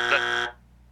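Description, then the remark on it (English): A loud, flat electronic buzzer blares steadily for about half a second, a harsh tone rich in overtones, then cuts off abruptly into near silence. “He was first of all, to have a boring buzzer.”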